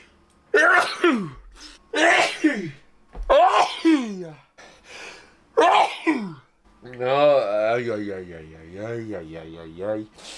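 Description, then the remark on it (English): A run of about five loud sneezes fires off in quick succession, each a sharp burst trailing into a voiced tail, followed by a longer wavering vocal groan. “And believe me, that is just the edited highlights of the sneezing that's been going on through the making of this podcast.”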